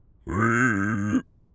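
A pig named Suey lets out one drawn-out grunt lasting about a second, a low, buzzy, steady tone that swells briefly at the end before cutting off, with quiet around it.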